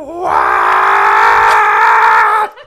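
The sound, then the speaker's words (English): A single loud, drawn-out rooster crow, likely a human voice imitating it, rising at the start, held for about two seconds, then dropping off abruptly, with no other sounds around it. “The rooster crows again.”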